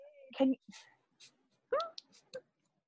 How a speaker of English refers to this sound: All you're going to hear in the background of this is just dog whining.